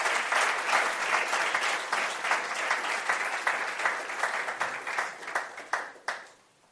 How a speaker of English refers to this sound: Amen. Just a round of applause for them.